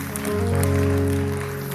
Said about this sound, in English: Are we clapping now?